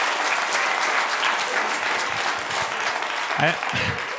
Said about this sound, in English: Oh, yeah. Oh, yeah. They're applauding.